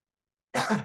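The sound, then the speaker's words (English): A single short, rough cough bursts out after a moment of silence, brief and fairly loud, with no talking around it. “Sorry, I was leaned away to cough.”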